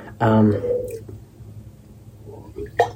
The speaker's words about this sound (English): Sorry if I take a few sips of my water here.